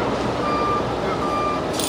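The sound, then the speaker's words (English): A city bus rumbles, sounding two steady electronic beeps in a row, with a short burst of air-brake hiss at the very end, at its first stop at the corner of Beach 67th Street and Beach Channel Drive, where about 20 people are waiting. “I would say there's probably 20 people here waiting for the bus.”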